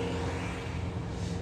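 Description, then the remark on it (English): A Bobcat-type skid-steer loader drives along at a resort, following someone walking, its diesel engine droning steadily in a constant low, throbbing rumble with a broad mechanical hiss that holds at an even level throughout, with no voices. “I'm literally walking and there's a freaking, there's like bobcat things. He's like basically following me.”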